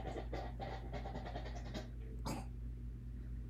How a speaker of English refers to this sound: What was that? She's clearing her throat.